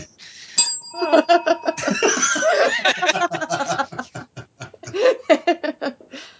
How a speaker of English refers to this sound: I knew I bought this bell for a reason.